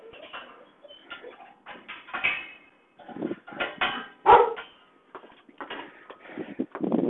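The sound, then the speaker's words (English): A dog named Honey barks repeatedly in irregular bursts, fairly loud, with short pauses between barks and a faint clatter of household objects in the background. “And I would have to say, oh, there's my dog.”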